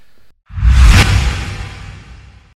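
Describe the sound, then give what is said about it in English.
A loud whoosh transition effect sweeps in abruptly, peaks with a bright rushing swell, then trails off smoothly over a couple of seconds, standing alone with no talking. “So we'll see you after this little whoosh.”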